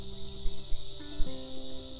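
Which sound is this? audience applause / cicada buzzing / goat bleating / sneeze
cicada buzzing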